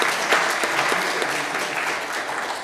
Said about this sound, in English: Thanks also to the interpreters who've done an incredible job throughout the preceding day and today and tonight. So a big applause for them. Un applauso.